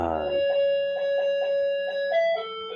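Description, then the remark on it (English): An electronic doorbell plays a festive Christmas chime, a sustained, bright melody of a few pure notes that steps up and then down near the end, heard clearly with no talking. “And Merry Christmas, everyone, because our doorbell, we haven't updated it since Christmas time.”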